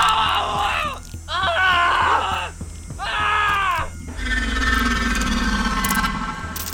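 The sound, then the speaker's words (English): Male officers scream in terror in three loud, overlapping bursts of strained, wavering cries, followed by a rough, rumbling commotion that continues without voices. “I'm not sure the officers understood either, the way they started screaming.”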